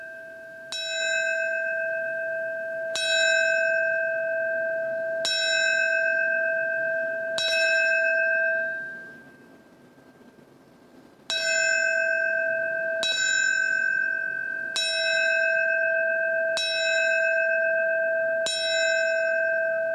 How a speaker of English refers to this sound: The ceremony will start with the ringing of the New York City Fire Department bell. It will ring 20 times in four sets of five rings, the traditional signal for a fallen firefighter.